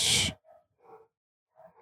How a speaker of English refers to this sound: Man, your dogs are going bananas. They're going wild.